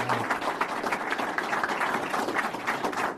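An audience in Texas applauds the announcement of an executive order allowing all businesses to open 100%, many hands clapping in a dense, steady patter that holds at an even loudness for a few seconds, with no one speaking over it.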